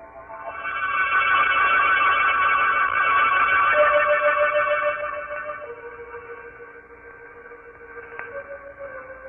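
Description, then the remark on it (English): A doorbell rings in the drama I Walk in the Night, in a loud, sustained, buzzing peal for about five seconds, then fades to softer lingering tones that step down in pitch. No one speaks. “I don't know if it was the ringing of the doorbell that awoke me, dragged me back to consciousness out of a deep, heavy sleep.”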